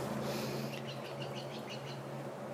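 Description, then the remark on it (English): A wild bird calls in a quick run of high, short chirps, fairly faint, over a steady low outdoor hum with no talking. “I don't know that bird.”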